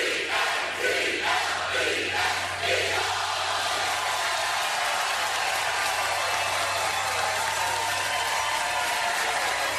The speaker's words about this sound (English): A little bit more robustly on Eagles. And then cheer after Eagles. Applaud, right.